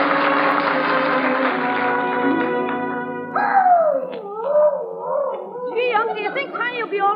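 A rough, noisy commotion gives way to Leroy's dog howling, a run of loud, wavering cries that rise and fall several times in quick succession.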